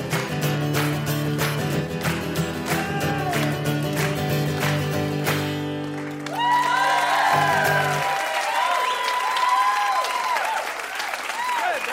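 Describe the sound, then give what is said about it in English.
An audience claps along in rhythm as a song plays to its end, then breaks into loud, sustained applause mixed with cheers and whistles once the music stops. “Good clapping.”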